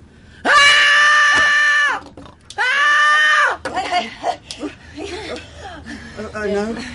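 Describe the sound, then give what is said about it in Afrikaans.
A woman lets out two long, loud, high-pitched screams in quick succession, followed by indistinct voices and some muffled movement. “Wie skree so?”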